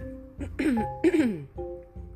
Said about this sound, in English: Let me clear my throat.